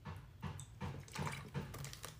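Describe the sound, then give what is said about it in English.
Someone drinks water with a steady series of about five gulps and swallows, each about half a second apart, and no talking. “I have water here. I'm going to take some.”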